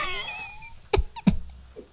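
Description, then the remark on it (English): A sudden sneeze erupts after a trailing vocal tone, two sharp, breathy bursts in quick succession, fairly loud against an otherwise quiet background. “Bless you.”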